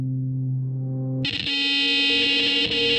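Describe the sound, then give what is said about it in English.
A cell phone emergency alert tone warning of a missile threat to Hawaii: a low, steady droning tone gives way abruptly to a loud, harsh, buzzing alarm that holds continuously to the end, with no voices. “And as we were on our way to the beach, my cell phone went off with this warning.”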